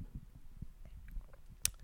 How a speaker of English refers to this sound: Oh, you know what? Now would be a good time to have a sip of this wonderful cookie dough drink. Mmm. Tastes like...